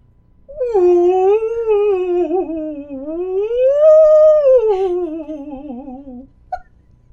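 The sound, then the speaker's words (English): A voice imitates an eerie ghost whale call in one long, wavering moan of about six seconds. It glides down, swells upward, then sinks slowly, loud with no talking. “I could try a ghost whale.”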